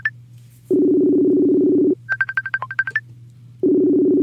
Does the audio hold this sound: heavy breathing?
no